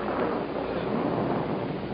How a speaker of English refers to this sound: What was that? Just thunder.